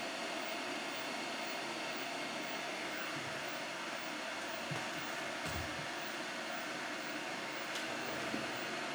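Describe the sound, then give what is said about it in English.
An electric kettle heating water gives off a steady, unbroken rushing roar with faint low bubbling rumbles, constant in loudness throughout and with no voices. “You can hear the kettle in the background.”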